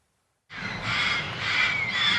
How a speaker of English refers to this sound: You can hear the place before you ever see it. In a lonely corner of Los Angeles is a home for dozens of parrots, many of them neglected, abandoned, abused.